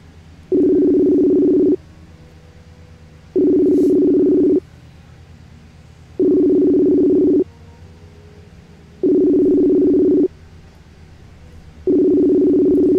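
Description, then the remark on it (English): A telephone ringback tone sounds five times in a steady rhythm as a call is placed, each buzzy ring lasting about a second with short silent gaps between, clear and fairly loud with no talking. “So anyway, let me go ahead and jump in here and see if we can get my boy called up here.”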